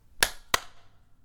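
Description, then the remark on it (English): Two sharp hand claps, from a group clapping together on a count of three, land about a third of a second apart, each a loud, slightly smeared burst as if several hands struck not quite together, followed by quiet. “Let's do a clap on three.”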